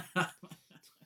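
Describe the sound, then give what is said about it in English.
A single loud, explosive sneeze bursts out sharply, then trails into a few faint, short breathy sounds and soft murmurs. “Bless you.”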